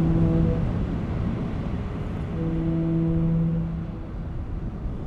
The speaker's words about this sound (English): We're listening to the sound of foghorns, a sonic component in this ship-to-shore technological infrastructure.